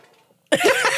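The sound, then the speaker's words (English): A short, loud fart bursts in after a moment of near silence, a buzzy, sputtering blast lasting about half a second, with no talking. “Was that place for a fart right there?”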